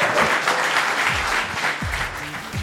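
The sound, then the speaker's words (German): Steady audience applause fills the whole stretch, a dense wash of many hands clapping at a fairly loud, even level, with a few lower voices or cheers faintly mixed in, given to a guest at the close of the evening. “Dein Applaus.”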